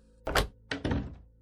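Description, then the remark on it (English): A door clicks shut as a man walks out: a sharp knock followed by a heavier thunk and a brief rattle of the latch, then quiet. “He walked out of my life with a click of the door.”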